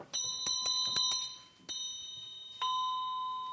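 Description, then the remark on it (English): A small metal bell, suspended from its center and free to vibrate at the edge, struck about seven times, quickly at first and then more spaced out, each ding bright and ringing, the final strike sustaining clearly to the end. No voices. “The bell is free to vibrate at the edge.”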